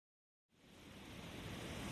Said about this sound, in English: I recorded the sound of the ocean at the beach a few weeks ago when we were evacuated for the fire. I spent an afternoon out there with the dogs, trying not to think about fire and enjoying the sound of the water.